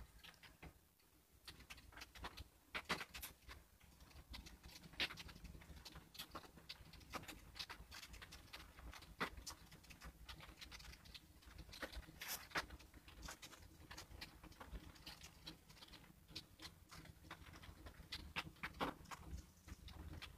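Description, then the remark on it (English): Steady rain falls with irregular drips and taps pattering over a soft continuous wash, with no voices, lasting throughout at a moderate, even level. “I'm going to spend a minute just listening to the rain.”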